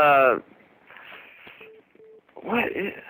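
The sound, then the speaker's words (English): Two short, steady electronic beeps, phone-like and fairly low in pitch, sound one after another in a brief pause between stretches of talking. They are soft compared with the voices. “Do you hear that beeping? I did hear a little beep, yeah.”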